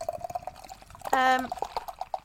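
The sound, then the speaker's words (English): Beer pours steadily into a glass, a fizzy, bubbling trickle with faint clicks and drips, interrupted midway by a brief, louder tonal murmur before the pour carries on. “Ooh, smells good. I can smell it already as it's pouring.”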